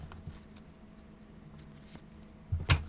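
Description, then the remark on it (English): Quiet low hum with a few faint ticks, then a brief, loud papery riffle as a deck of tarot cards is shuffled near the end, before a card is pulled for a July reading. No one speaks. “One more shuffle.”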